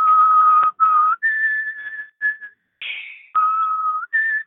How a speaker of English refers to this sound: So the first thing that pulls up the other night is a video of your lawnmower and you doing the song that they play for a fallen soldier when you go to the funeral. Ow. Whistling.